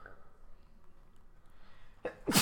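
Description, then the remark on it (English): A single loud sneeze bursts out at the very end, preceded by a short sharp intake of breath after a stretch of quiet background noise. “I'm next to sneeze”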